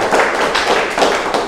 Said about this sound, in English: The Zimbabwean leads us in the Pentecostal clapping. So if you're English, we follow the Zimbabwean.